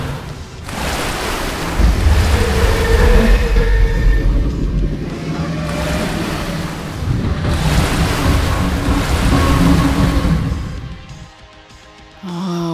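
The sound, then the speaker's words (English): A huge mass of water surges and roars as a 60-meter-tall giant squid monster rises out of the sea, with a deep rumble underneath and two loud swells before it fades out. No talking. “The 60-meter-tall entity rises from the water, exposing a maw that could swallow a school bus.”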